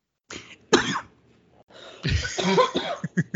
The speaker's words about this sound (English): Yeah, I was going to say, I'm trying to cough away from the mic. Sorry.